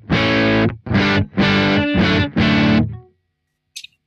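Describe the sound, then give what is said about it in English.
A distorted electric guitar with amp gain at 3.5, EQ in the middle and definition at 4.6, played without reverb, plays five loud, chunky chords in a steady rhythm, each cut off dry with no lingering echo, followed by a brief faint click before silence. “Just without the reverb.”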